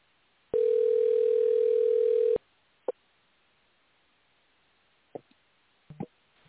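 A loud, steady telephone dial tone hums for about two seconds while a call is being placed to bring another person onto the line, then cuts off, followed by a few brief, scattered clicks and taps on the line.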